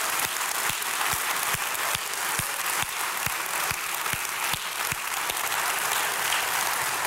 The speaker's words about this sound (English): And I believe we should give him one more clap offering because he's awesome.